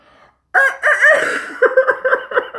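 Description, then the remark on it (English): A rooster crows loudly, one long wavering call that breaks into a string of short, choppy clucking notes before fading out. “And then there's always the rooster.”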